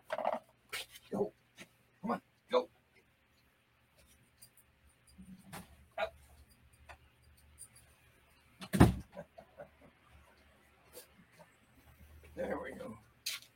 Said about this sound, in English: Excuse me, I'm going to put a certain dog out the door. Okay.